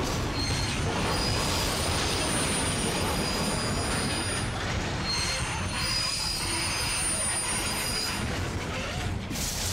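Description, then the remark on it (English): A train wreck downtown: a train's wheels screech loudly against the rails, with high, thin squealing tones over a heavy, continuous rumble and clatter of railcars, lasting steadily throughout without any voices. “Downtown train wrecks leave dozens injured.”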